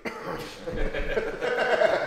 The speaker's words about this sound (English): Sorry. Had a cough.